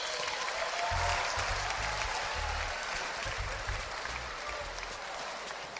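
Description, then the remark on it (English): An audience claps together for a woman whose foot pain was healed after prayer, in dense, sustained applause, a steady wash of many hands at fairly even loudness for several seconds, with a faint murmur of voices underneath. “Clap for her.”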